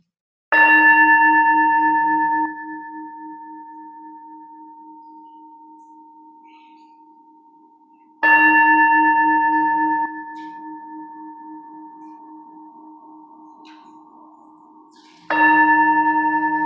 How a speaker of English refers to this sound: And now I'd like to invite everyone at home and here in the sanctuary to take a deep breath, ground yourself and settle in as we hear the ringing of the bell calling us into worship.